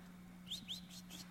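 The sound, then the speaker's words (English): A person whistles to call a cat: four quick, high-pitched chirping whistles that sweep upward, fairly faint, over a steady low electrical hum, with no talking. “I've taught my cat to come when I whistle.”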